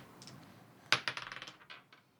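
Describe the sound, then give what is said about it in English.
A die is tossed onto a hard surface and comes up a 1: one sharp clack, then a quickening run of smaller rattling bounces that fade out within about a second. No one speaks. “I'll be 1 and 2 since I just rolled a 1.”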